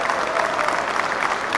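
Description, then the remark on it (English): A round of applause from a small crowd, a steady wash of dense clapping that holds evenly for a brief moment, fairly loud, with no voices. “Cue round of applause.”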